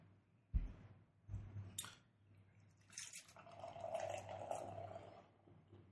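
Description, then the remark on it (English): Blue Hen Pilsner beer (4.8%) pours from a 12-ounce can into a glass with a steady fizzing splash after a couple of sharp clinks and knocks at the start, no one speaking. “Messy with your pour.”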